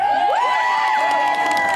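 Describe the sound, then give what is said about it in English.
A crowd cheers loudly and steadily for a cheer squad of women, with many overlapping voices whooping and shouting high-pitched rising and falling cries, and faint clapping mixed into the constant roar. “Let's give it up for the cheer squad.”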